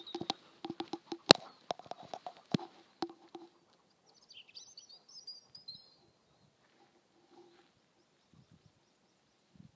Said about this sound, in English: Was that a magpie? Or was it a rook? If I had to guess, I'd say it was a rook.